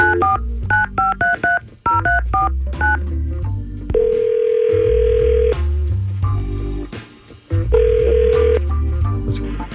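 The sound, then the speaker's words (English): A quick run of telephone keypad beeps dials a number, followed by two long, steady ringback tones separated by a pause, all over a low background music bed. No one speaks. “We're going to try to call David right now.”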